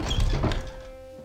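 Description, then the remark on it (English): A heavy door of the Dunmare Temple in a video game thunks open with a dull, low impact followed by a brief scraping rumble, fairly loud, fading into a faint lingering hum. “And then I step through the doors.”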